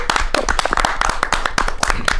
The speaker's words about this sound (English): Let's give a warm, warm round of applause to my man,